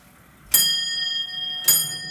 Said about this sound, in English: We have a nice sounding bell, high quality.